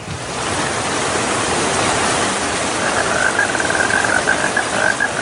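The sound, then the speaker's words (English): A steady, dense hiss of rain falling in Mississippi from a cloud of water vapor generated by a NASA engine, loud and continuous throughout, with a faint thin chirping tone joining in over the second half. No one speaks. “I told you. It's raining.”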